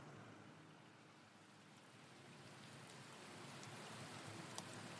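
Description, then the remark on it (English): Steady rain falls outside a clinic, a dense even hiss of drops with occasional sharper spatters on hard surfaces, growing slightly heavier toward the end. No voices are present. “The man standing in the rain outside the Sharp Clinic is John.”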